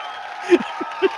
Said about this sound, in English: comes out and does the seal clap.